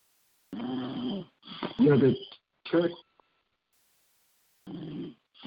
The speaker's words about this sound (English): I hear, like, snoring in the background.